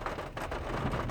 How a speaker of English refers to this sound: I apologize for the windshield wipers. It's got a bit of rain coming down.